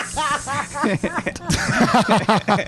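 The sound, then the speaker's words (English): A person does a loud impression of a garden snake: drawn-out hissing blended with voiced, sing-song vocal sounds and a bit of chuckling over about three seconds. “I'm just a regular snake.”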